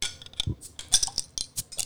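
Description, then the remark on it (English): A crown cap is pried off a bottle: a few quick metallic clicks and scrapes, a dull low knock, then a sharp bright snap with a short hiss, all fairly quiet and with no talking. “It's another bottle, and this time it's not twist off, so.”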